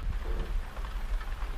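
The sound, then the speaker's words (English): Rain drums steadily on a roof, a dense, even hiss of patter with a soft low rumble underneath, fairly quiet and continuous, with no voices. “Here I am, talking to you again, this time as the rain falls on the roof above my head. Can you hear that?”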